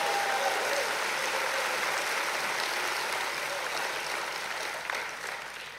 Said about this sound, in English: Clap your hands and praise the Lord.